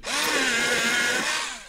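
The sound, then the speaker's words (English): An electric pencil sharpener grinds a pencil in one steady burst of about a second and a half, a loud buzzing whir with a rough, scratchy edge that shifts slightly in pitch. No one talks. “Do you remember the sound of a pencil sharpener?”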